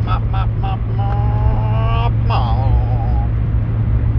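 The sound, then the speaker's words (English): A car speeds up to overtake a slow-moving vehicle, heard from inside as a steady, loud low engine and road rumble, with voice sounds rising and falling over the top. “And this person's going really slowly, so I'm just going to overtake and speed up a little.”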